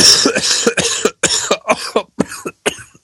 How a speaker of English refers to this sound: I really need a cough button.